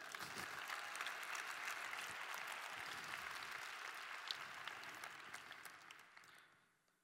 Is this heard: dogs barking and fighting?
no